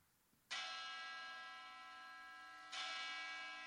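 A church bell chimes twice, loud. Each bright, resonant strike rings out with a long, shimmering sustain, and the second comes about two seconds after the first while the first still hangs.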